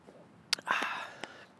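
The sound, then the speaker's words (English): A quiet sip of coffee: a small click as the cup meets the lips, then a brief airy slurp lasting under a second. No talking. “have a quick sip of coffee and then get started.”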